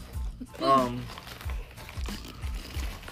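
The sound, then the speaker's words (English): Crunchy snack munching by people, with crinkling wrapper noises, repeated in irregular bursts, while a brief voiced murmur rises early on. “And just to let you know, we're munching because he's high.”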